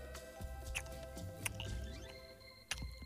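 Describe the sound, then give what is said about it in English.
Someone chews a chicken nugget with soft, wet crunches and clicks at an irregular pace, set against a steady low electrical hum. Nobody speaks. “We're not going to listen to you chew, are we?”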